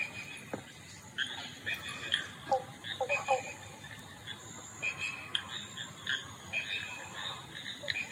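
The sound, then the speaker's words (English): Moaning frogs call beside a pool in Manjimup in short, grunting bursts like a pig snorting that repeat irregularly, over a steady high-pitched chorus of insects or smaller frogs in an outdoor night setting. “There are some moaning frogs calling, and they do sound a little bit like a pig snorting.”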